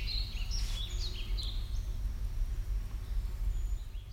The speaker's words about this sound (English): This is moving to Brown Ridge on Saturna. Oh yeah, nice. Nice clear trill. I'd guess that's junco.